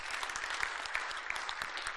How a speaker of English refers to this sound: Go ahead. Clap.